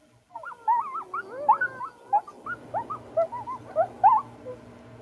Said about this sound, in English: Some newborn. Newborn puppies. Puppies. Puppies. Yes. Those are puppies.